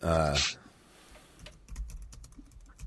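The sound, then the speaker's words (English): A short burst of voice opens, then rapid, uneven clicking of keys on a computer keyboard follows, fairly quiet, the taps coming in quick irregular clusters. “I'm typing something real quick.”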